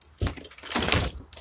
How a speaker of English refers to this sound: Let me close the screen door here.